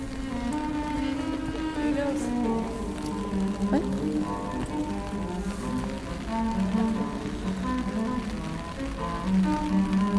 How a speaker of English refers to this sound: As the rain pelted us, we trekked through our neighborhood and then ended up walking back into the main town area to find a restaurant for dinner.